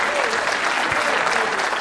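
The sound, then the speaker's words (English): An audience in a church claps together in a dense, steady burst of applause that stays loud and even for the whole stretch, many hands blending into a continuous crackling wash. “You ought to clap or somehow express some kind of response.”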